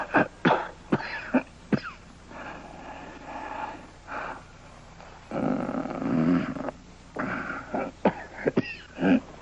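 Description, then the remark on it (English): Harsh, hard coughing from a shivering person who has caught a slight chill: sharp bursts at the start and end, with longer raspy, strained stretches between them that sound like wheezing breaths. No one speaks. “I'm sorry to wake you, but you were shivering and coughing so hard, I was afraid you were ill.”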